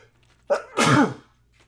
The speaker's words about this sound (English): I think I got to sneeze. Hold on. Okay. Oh, shit. Hold on.